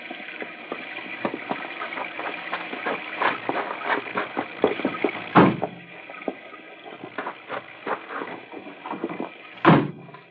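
Car doors being worked open and shut, with rattling handle clicks and shuffling, punctuated by two solid thuds a few seconds apart as doors slam closed.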